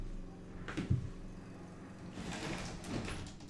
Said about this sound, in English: And I'm going to close this window.